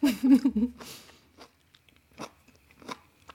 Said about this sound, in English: It sounds vegetal and crunchy yet moist. Okay, I'll take another bite. Oh, well, now it's sounding real crunchy.